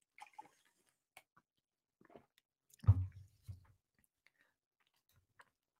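Faint mouth sounds: a few wet clicks and smacks, then a soft low gulp midway through as water is sipped, with near silence around them and no talking.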